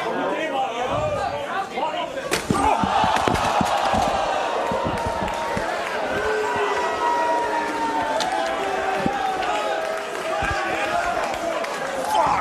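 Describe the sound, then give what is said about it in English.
A headset clatters down and a thrown chair cracks against wrestler Mark Haskins, sharp impacts landing a few times over the steady roar and chatter of a large arena crowd. “And just like the sound of like the headset falling off and the chair hitting them.”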